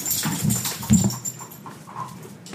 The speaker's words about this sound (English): Getting some ASMR sniffing. Yeah. Dog sniffs.